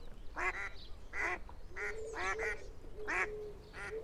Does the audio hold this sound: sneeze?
no